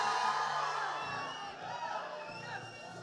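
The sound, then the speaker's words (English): An audience shouts and cheers to God together, a dense wash of many voices with whoops rising out of it, loud and sustained for a few seconds before easing slightly. “Can you give God a shout if you know I'm talking to you?”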